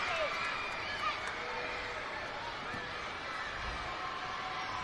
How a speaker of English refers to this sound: Second free throw as the kids begin to scream again.